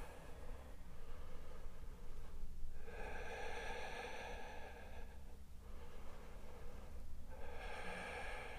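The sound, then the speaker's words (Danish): Slow, deep breathing with no talking: three long, rushing breaths follow one another at an unhurried pace, steady, each a loud airy swell against a low background hum, as a person holds a yoga plank pose. “Tag tre dybe vejrtrækninger her.”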